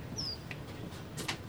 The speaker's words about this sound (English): Bird goes beep. Bird goes beep.